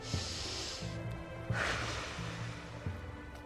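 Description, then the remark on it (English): Deep, slow breaths in a breathing exercise: a long airy inhale through the nose followed by a breathy exhale through the mouth, fairly loud, with a low steady hum underneath and no talking. “Now inhale through the nose and exhale through the mouth, without talking.”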